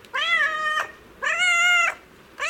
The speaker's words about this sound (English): That's a domestic cat.